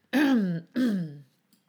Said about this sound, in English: Okay, I'm back. I had to pause and I had to cough.